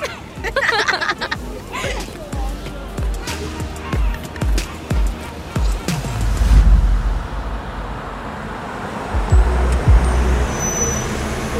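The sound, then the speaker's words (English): A car drives along a road and pulls up to a house, with a steady low engine rumble and tire noise, swelling briefly midway, with faint background murmur and scattered clicks. “When I pull up to the house, I notice Reed's car in the driveway and I feel my heart flutter.”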